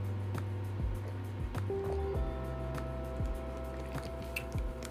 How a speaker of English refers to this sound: let me take a sip real quick.